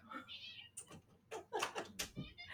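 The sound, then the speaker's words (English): A female cat belonging to a mother-in-law meows several times in quick succession, high-pitched and wailing cries with a drawn-out, almost baby-like quality, each call rising and falling over a few seconds. “My mother-in-law's cat is in here.”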